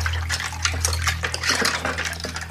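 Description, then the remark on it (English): Dishes being washed under running water in a kitchen, with a steady faucet hiss and frequent clinks and clatters of plates and cutlery, with no talking. “Magpie drinks down the last of her orange juice, pushes her sleeves up, and gets started on the dishes.”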